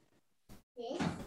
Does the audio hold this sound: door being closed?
yes